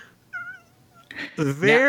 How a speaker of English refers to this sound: I mean, my Torty cat, whose name is Torty, she just mews all the time for attention.